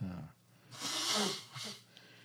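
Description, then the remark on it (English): Someone blows their nose because of allergies: one long, forceful, breathy honk followed by a shorter second blow, with a faint low murmur just before. “So next, this is not me blowing my nose in the background because I'm tearful. It's allergies now getting the better of me.”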